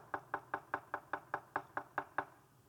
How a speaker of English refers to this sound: Behold, I stand at the door and knock. So it'd be like this.